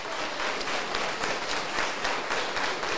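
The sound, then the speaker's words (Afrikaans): A crowd applauds the pastor steadily, many hands clapping in a dense, continuous patter that holds at an even, fairly loud level throughout, with no voices rising above it. “Kom ons gee maar net klap.”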